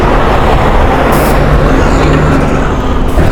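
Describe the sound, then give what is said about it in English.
Five heavy trucks roar past in a steady, loud rush of engine rumble and road noise, with a deep low drone throughout and no break between vehicles. No voices are heard. “All of a sudden, five trucks wanted to pass by.”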